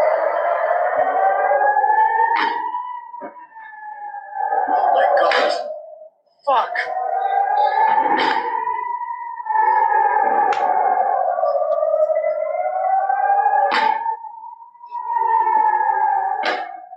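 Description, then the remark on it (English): A wailing air-raid siren rises and falls continuously while several sharp bangs from Iron Dome rocket interceptions and explosions burst through at irregular intervals, a few louder than the rest, including one really large explosion from a direct hit. “Yeah, you can see the Iron Dome going up and hitting the building. There's one really large explosion.”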